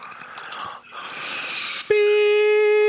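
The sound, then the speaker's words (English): A loud, steady electronic censor beep cuts in abruptly after a stretch of hissy, muffled noise, holding one unwavering mid-pitched tone with buzzy overtones until the end. “Beep.”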